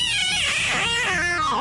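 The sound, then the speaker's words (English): A single drawn-out meow from a pet cat named Mooch, loud, its pitch rising and then sliding down over under two seconds, with no talking. “Where's the cat noise? Where's the cat? The cat button.”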